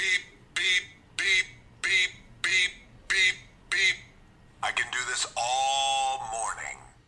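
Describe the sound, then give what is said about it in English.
A silly alarm tone from an alarm clock app featuring The Rock: seven evenly spaced, nasal honking bursts like quacks, followed by a longer, louder warbling squawk that wavers in pitch before cutting off. “There's some really stupid alarms. Let me go ahead and play one for you.”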